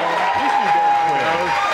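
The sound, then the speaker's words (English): A crowd claps and yells at the same time, forming a dense, steady wash of applause. Voices shout and scream over it, and a thin high tone rings through the whole burst. “Why are we clapping?”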